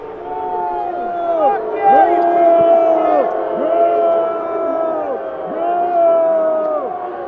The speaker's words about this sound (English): And the crowd was screaming at them, shame, shame, shame.